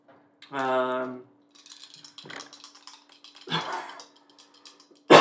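A drawn-out voiced breath rises into a sneeze, with a sharp, noisy burst following after a pause. Light tapping and clicking fill the gap, and another abrupt burst cuts in at the very end.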